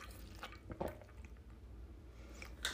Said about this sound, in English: I'm going to take a little bit of water.